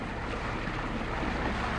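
A boat motors steadily out across Lough Ree on the River Shannon, its engine a low continuous rumble blended with rushing water and wind buffeting the microphone, loud throughout with no speech.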